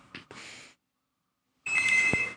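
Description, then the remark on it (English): Call-waiting beeps on a phone line: two short, hissy bursts, a second of silence, then a longer steady electronic tone over crackly line noise. No one speaks. “Wow, sounds like the call waiting on this phone line is even worse than it was on the other.”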